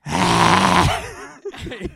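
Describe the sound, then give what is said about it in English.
A voice imitates yoga breathing, in and out: one long, loud, groaning exhale, followed by a few shorter, softer breathy puffs. “This was like I legitimately thought I was doing like yoga breathing. I was being like, in and out.”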